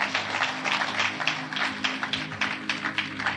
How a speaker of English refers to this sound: You are too quiet for me. Clap your hands for God.